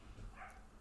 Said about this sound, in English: Oh my god, we have doggies barking.